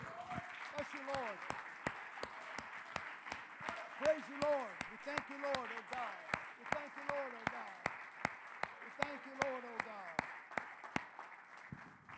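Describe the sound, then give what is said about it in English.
An audience at a church service claps hands in praise to the Lord in a steady, even rhythm, the sharp claps evenly spaced, while voices call out and sing over them throughout. “Let's just stand up and give the Lord a praise right here and bless him for the service this morning. Come on, clap your hands to the Lord.”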